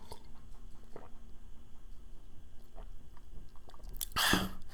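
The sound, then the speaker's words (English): Someone takes a sip of a drink, with soft wet mouth noises followed by one short, louder slurping burst near the end. No one speaks. “Let me take a sip of this.”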